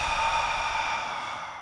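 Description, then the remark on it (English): An airy breath, a deep inhale through the nose as the belly rises, followed by a slow exhale through the mouth as the belly falls, heard alone as a soft, steady rush that fades slightly toward the end. “So inhale through your nose, belly rises. Exhale through your mouth, belly falls.”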